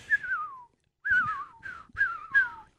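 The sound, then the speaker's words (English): A person whistles an imitation of a loon call: a long descending wail followed by several shorter sliding, falling notes, clear and moderately loud, with no talking. “I felt like it needed bird sound effects. One loon to rule them all.”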